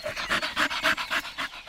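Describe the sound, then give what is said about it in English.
A dog pants rapidly and rhythmically, about six or seven quick breathy huffs in a steady pattern, with no one speaking over it. “Who's a happy boy? Who's a happy boy?”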